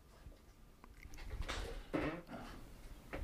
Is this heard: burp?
no